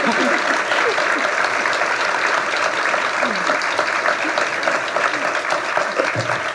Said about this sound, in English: And now can we really give them some thunderous applause, because this is a really stellar crew of women.